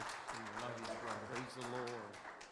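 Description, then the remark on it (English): Steady applause from a church audience giving praise as the pastor comes up during a morning service, a dense crackle of many hands clapping throughout, with voices calling out and cheering over it. “In Jesus' name, give your pastor a praise as he comes.”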